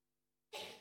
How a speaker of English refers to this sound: Bless you, by the way.